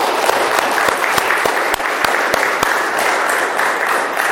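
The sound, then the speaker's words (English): A church audience in Big Sky applauds steadily for several seconds on a Sunday for a member on his last Sunday there, a dense, even wash of many hands clapping with a few sharper individual claps cracking through. No one speaks. “I'd just like to give him a round of applause, if you don't mind.”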